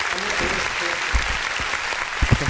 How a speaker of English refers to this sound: So, clap it up for the missus.